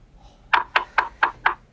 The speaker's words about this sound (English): Someone knock on the door?